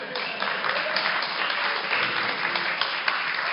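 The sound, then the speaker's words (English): A crowd applauds steadily, many hands clapping at once in a dense, even wash of sound that holds at a fairly loud level throughout without building or fading. “Don't clap too much.”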